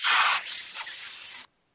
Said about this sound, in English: It sounds like a snake that's just been run over or something.